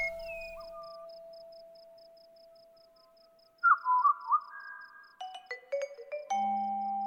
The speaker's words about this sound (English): Taylor records pied butcher birds and transcribes their song into musical notation.